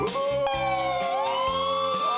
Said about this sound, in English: He's punching the siren in and out. The siren's always on. He's like, he's just turning it on and off. Yeah, it's always so abrupt. It's like he's muting and unmuting it. I love that dynamic change there.